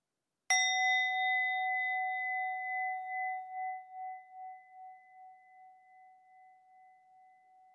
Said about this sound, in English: And in a few moments, I want to ring the bell. I'd like to just listen to the sound of the bell.